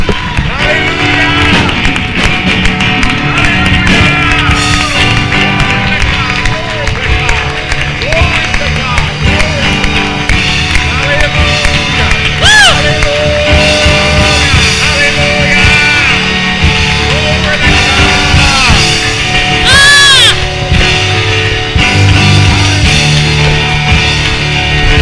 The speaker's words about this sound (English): The pastor would get up and said, congregation, will you with me right now celebrate the word of God? And at the close, and give the Lord praise and applause and celebrate the word of God.